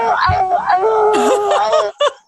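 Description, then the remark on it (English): A person loudly imitates an anguished scream of pain as a sound effect for a character falling to their knees in agony, a wavering, strained wail lasting about two seconds, cut off abruptly and followed by a short final yelp. “And y'all hear this, right? You hear Rutherford screaming.”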